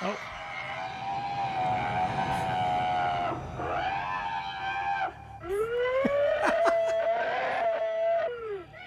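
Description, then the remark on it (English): A film creature's long, strained death scream with strong harmonic wailing, rising and falling in two extended bursts, loud, with a brief break in the middle. “So that was actually the scream.”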